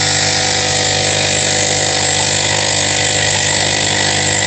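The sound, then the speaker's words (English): A coffee maker brewing with a loud, steady mechanical whir and a low droning hum that holds unchanged from start to finish, with no voices over it. “I think I know what it is. A coffee maker.”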